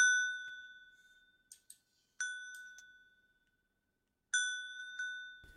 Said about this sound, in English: However, you do hear the bells just one last time about halfway through the night.